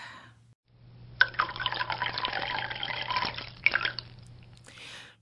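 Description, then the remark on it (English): Coffee pours steadily into a cup for about two and a half seconds, a bright gurgling splash that starts abruptly and stops, over a low constant hum. “I forgot to fill my coffee cup.”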